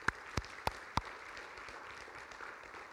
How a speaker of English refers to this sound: Can we give him a round of applause for that?